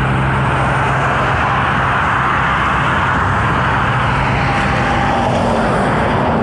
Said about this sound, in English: These cars are very close.